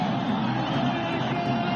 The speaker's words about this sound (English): Listen to that crowd. That's what they've been waiting for. Hosni Mubarak has gone.